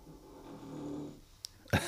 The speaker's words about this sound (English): I thought someone was knocking at the door. That is a Sammy. Dog snort.